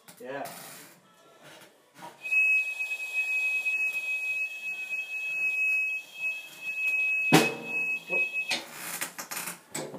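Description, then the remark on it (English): A single long, steady whistled note holds at one high pitch for about six seconds, clear over a faint rustling background, with a brief click near the end before it stops. “Want to see how long I can whistle for?”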